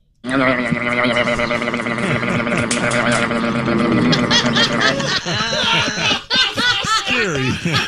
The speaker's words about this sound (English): Something very similar now. A goat eating a Dorito.